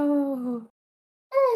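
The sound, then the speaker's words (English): A small, high-pitched yawn with a drawn-out voiced moan that slides gently downward, then a brief silence before another whiny vocal sound starts at a higher pitch. “That was the cutest yawn I have ever heard.”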